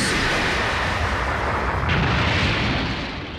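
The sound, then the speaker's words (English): A loud, roaring energy blast sound effect surges continuously for about three seconds, dense and rumbling, then tapers off slightly at the end, with no voices. “So before we get into all that, it is time for this week's Big Bang Attack!”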